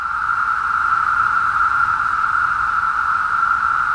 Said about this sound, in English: Cicadas make that sound by rubbing their wings together in giant choirs that can hit 90 decibels, or about the loudness of a power lawnmower. It's a sound that has been described as the caterwauling of a million cats